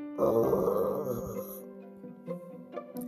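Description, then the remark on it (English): A polar bear's deep, rumbling growl swells loud for over a second, then tapers into a few softer grumbles. “A polar bear growls at it.”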